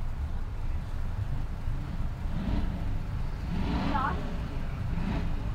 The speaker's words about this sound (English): I don't think you can hear it because that other guy's revving his engine